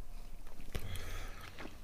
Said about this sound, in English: So after a few chews, it's really getting the juices going and the flavour pumping. Mouth watering.